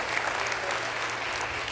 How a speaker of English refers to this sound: I didn't mean to clap that at you. I'm sorry about that.